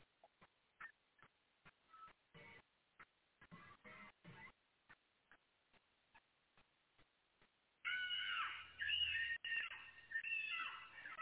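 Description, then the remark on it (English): Scattered sharp clicks and brief vocal bursts give way to a loud, sustained screech as a girl in yellow screams, her voice breaking into piercing, shrill cries that imitate a hawk's call. “She just did a hawk noise while she was screaming.”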